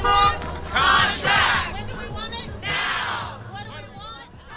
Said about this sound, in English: Kids, teachers, parents, they're out in the bike lanes with their signs, kind of encouraging people to honk. One day longer, one day longer.